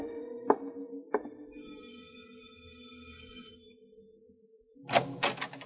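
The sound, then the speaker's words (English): The front door of a two-story stucco house opens: two sharp clicks, a sustained ringing tone for a couple of seconds, then a rattling clatter of the latch and door swinging near the end. “When the door finally opened, a little man, bald and red-eyed, stood peeking at me from behind thick-lensed glasses.”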